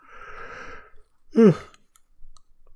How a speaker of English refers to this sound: Well, I gotta stop yawning. Sorry. Also, I almost never do edits in this, so I apologize as you listen to me yawn.